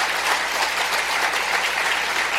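Steady audience applause, a dense wash of many hands clapping at an even, fairly loud level throughout, with no voices standing out above it.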